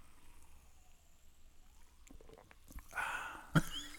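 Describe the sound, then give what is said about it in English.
A quiet first sip of a freshly opened raspberry lemon kombucha: a few small clicks, then a short airy slurp and a sharp wet smack at the end, with no talking. “All right, now, first sip, please. I need silence for that.”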